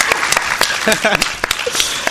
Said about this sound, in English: Let's just give a round of applause for the people here at Portus who are making this happen for us. Yay, food.